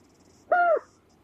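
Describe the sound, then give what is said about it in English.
A single short, mid-pitched call of an adult white-faced storm petrel, broadcast at night by a sound system in the new colony on the southwest cliffs of Mana Island, rising slightly then falling, clear and tonal with a harmonic overtone, heard alone over a faint night-time hiss of insects. “Every night, the sound system in the new white-faced storm petrel colony on the southwest cliffs of Mana Island broadcasts the sounds of adult birds.”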